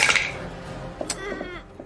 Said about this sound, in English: Sounds like a lot of dice.